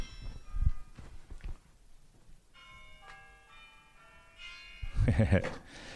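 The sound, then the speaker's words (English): A Big Ben chime plays from a phone speaker, a few ringing bell tones in sequence, thin and fairly quiet, with muffled voices and handling noise around it. “That's the Big Ben chime sound.”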